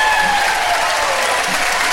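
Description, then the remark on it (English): Loud, steady applause from an audience at a square dance with 142 squares on the floor, welcoming the first caller from Port Arthur, Texas, as he takes the stage; a dense wash of many hands clapping at once with no pauses, sustained evenly throughout. “Give him a nice hand.”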